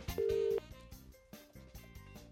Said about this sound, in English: If your name begins with the letter I, we might be giving you a call right now on private number.